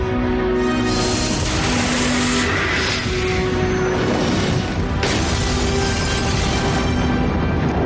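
A helicopter explosion: a dense, roaring blast of noise with a heavy low rumble that stays loud throughout, with a sharp burst around the middle and a steady tonal hum underneath.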